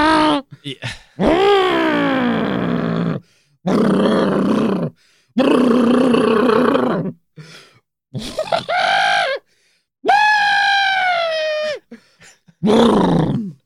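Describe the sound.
A voice loudly imitates a red Volkswagen Slugbug with a roaring coffee-can muffler coming down the road, in several long, gravelly revving bursts separated by short pauses, forceful with rising and falling pitch.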